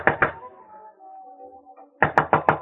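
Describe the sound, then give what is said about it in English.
An upstairs neighbour knocks on a door: two firm knocks, a pause filled with a faint low hum, then four quick, loud raps in a steady rhythm. “Go on, answer it. Who is it?”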